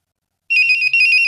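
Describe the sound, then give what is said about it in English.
A pager gives a single sustained high-pitched electronic beep as its batteries are put back in, starting abruptly after a moment of silence and holding steady at a fairly loud level with a slight flutter midway. “And don't forget to put the batteries back in your pager and get a good night's sleep anyway. I'll do it right now. You'll hear it beep.”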